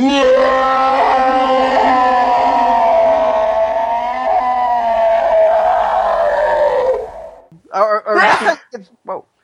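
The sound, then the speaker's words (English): A long, strained voiced tone holds steady for several seconds, then breaks into a few sharp, explosive bursts of breath: a drawn-out build-up ending in a sneeze. “Sorry, I just had to sneeze.”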